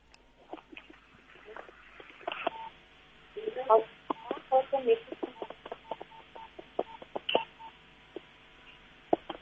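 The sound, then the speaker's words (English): A telephone number is dialed to call someone live on Radio Veritas: a quick run of keypad touch-tone beeps near the middle, heard over a thin, phone-line quality background with faint voices and clicks. “Now, we're calling her live on the radio, on Radio Veritas at the moment.”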